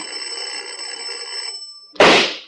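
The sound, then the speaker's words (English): A doorbell rings in one steady, bright, high-pitched buzzing tone for nearly two seconds, then cuts off as a sudden loud, sharp crack, a pistol shot from inside the house, bursts in and fades. “Make with that bell again”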